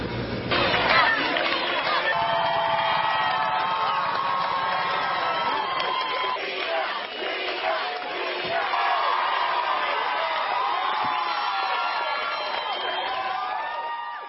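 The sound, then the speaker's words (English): A large crowd of onlookers in Cleveland cheers and shouts without pause as a police motorcade arrives on Wednesday. Many voices overlap in high, excited whoops and cries that stay loud and steady for the whole stretch. “A police motorcade parted crowds of cheering onlookers as Amanda finally arrived home Wednesday.”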